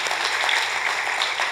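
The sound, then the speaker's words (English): A church audience at Anchor Church claps together in steady, dense applause for 1,300 children the church has sponsored out of poverty, a continuous crackle of many hands that stays at an even, fairly loud level throughout with no voices over it. “Can you guys clap for 1,300 kids?”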